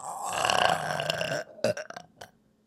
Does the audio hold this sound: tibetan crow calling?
no